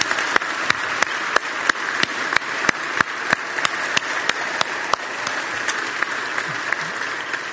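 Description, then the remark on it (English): An audience applauds steadily as a thank-you for good service to the community, dense clapping with sharp individual claps standing out, holding a fairly even level for several seconds with no voices over it. “And if you're here, I just want you to receive our applause as a thank you for your good service.”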